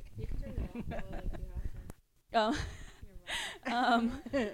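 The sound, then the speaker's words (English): A female's loud breathing comes in heavy, raspy bursts after a brief pause, following a stretch of people talking at the start. “Girl, can you hear her breathing?”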